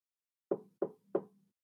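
Three firm knocks on the door of Johnny Medder's tractor trailer home, in an even, steady rhythm, distinct, with a slight hollow resonance after each rap and no voices.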